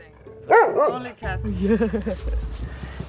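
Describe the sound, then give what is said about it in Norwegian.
A dog barks in a few quick, high-pitched bursts, then falls quiet as a person starts speaking over a low background rumble. “Og det slutter med en hund.”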